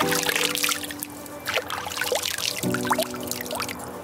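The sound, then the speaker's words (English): Water pours and trickles steadily, with bubbly splashes rising and falling, while a faint low steady hum runs underneath. No one speaks. “Immersive. With water that's wet.”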